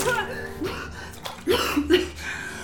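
A woman, just revived by resuscitation, gasps sharply for breath, then breaks into a few harsh, strained coughs and wheezy sputters, fairly loud, with no talking.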